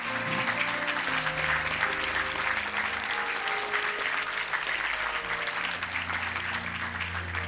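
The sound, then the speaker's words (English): A church audience applauds students at the end of a service. A dense, steady wash of many hands clapping at an even loudness for several seconds, with a low sustained organ-like tone humming beneath. “Give these students a big hand clap.”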